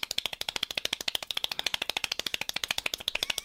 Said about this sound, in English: That is the fastest hand clapper. Oh. He like puts his hands together almost like in a praying motion, yes. And then slides them back and forth to like to create a clapping.